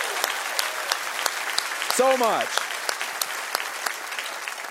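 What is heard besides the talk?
audience applause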